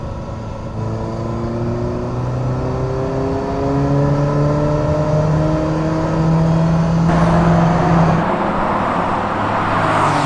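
A Ferrari Mondial T engine revs up through the gears while driving, its pitch climbing steadily in repeated sweeps, loud, with a steady whir and no voices.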